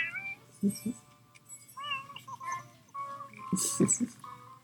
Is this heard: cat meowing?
yes